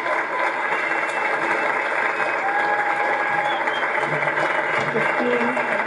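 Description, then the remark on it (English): An audience claps steadily for several seconds for two members of a company, a dense, even wash of many hands with a murmur of crowd voices mixed in, holding at a constant loud level throughout. “I'd love to hear a massive clap for two of the most essential parts of our company.”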